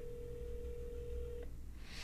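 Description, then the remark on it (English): A single steady electronic ringing tone from a Skype call, holding one pitch for about a second and a half before cutting off, over a low background hum. “Nope, it's ringing. But I'm looking at the Skype and it's not happening.”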